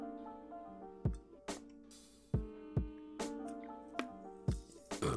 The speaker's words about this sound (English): Let me take a drink.